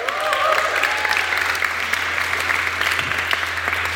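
An audience claps in a steady, sustained round of applause, dense and even throughout, with a faint whistle or cheer rising briefly near the start and a low hum underneath.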